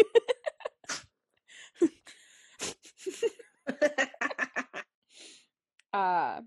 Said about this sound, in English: It's not breathing. She sneezed on me.